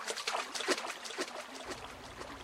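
Cold water of a little creek near a campsite in Texas trickles and burbles steadily as a woman steps in and washes herself, with small irregular splashes and a soft low rumble joining in partway through. No one speaks.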